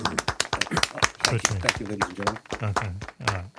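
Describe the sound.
A few people clap in quick, steady rhythm while voices talk and call out over the applause throughout.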